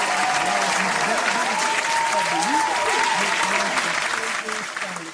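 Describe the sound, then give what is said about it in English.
Steady, dense applause from many hands, given for the owner and creator of Skies Natural Creation, a continuous crackling wash that holds loud for several seconds, with faint voices murmuring underneath, then begins to thin and fade at the end. “But look, I want to give a clap.”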